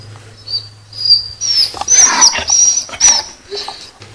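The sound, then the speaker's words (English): A female dog whines during an investigation in a series of high, thin, wavering whimpers, several drawn-out cries rising and falling in pitch, with a low steady hum beneath and no talking. “So I just stood here at the moment, and the dog has started whining.”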